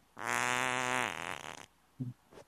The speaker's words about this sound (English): I have smoted myself by farting into the mic and then bringing it to my face. I've essentially just farted in my own face.